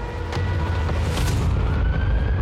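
signal or alarm, tornado warning siren

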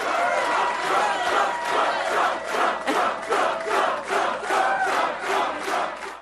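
crowd, rally crowd chanting

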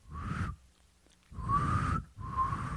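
human body sound, person attempting to whistle

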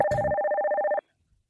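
signal or alarm, telephone ringing

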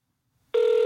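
household object, dialing a landline telephone

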